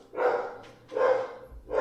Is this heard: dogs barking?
yes